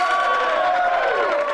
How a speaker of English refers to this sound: You're giving yourself applause? Yeah, I'll take it any way I can get it.